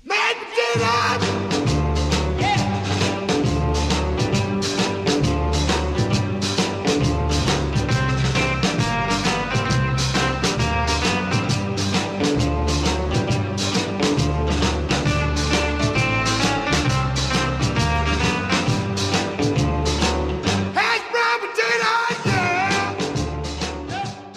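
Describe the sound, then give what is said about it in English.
A loud, upbeat instrumental song based on a dance, recorded in December 1959 at Dukoff Studios in Miami, Florida, with a steady, driving bass rhythm and full band, voices yelling about mashed potatoes and other potato preparations throughout, and a brief break near the end. “It's kind of an instrumental, as you can hear. It features yelling about not just mashed potatoes, but other kinds of potato preparations.”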